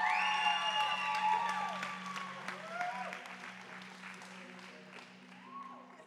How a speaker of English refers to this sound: listen, you guys give a big Movement Church round of applause. Come on, make some noise